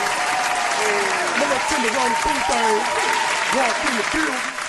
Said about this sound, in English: Oh, I got to get a clap.